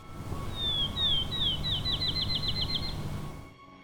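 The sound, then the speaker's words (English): A field sparrow sings in a meadow in the morning, a clear, high series of sweet slurred whistles that start slow and speed up into a quick trill, over a low, steady outdoor rumble. “The accelerating notes of the field sparrow.”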